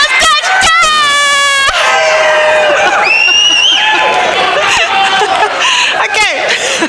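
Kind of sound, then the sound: crowd, audience yelling and cheering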